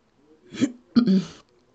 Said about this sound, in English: Sorry, clearing my throat.